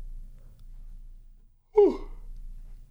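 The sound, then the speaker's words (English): A single short, breathy yawn, its voiced tone sliding downward, set against a quiet low background hum with no talking. “I got a yawn there.”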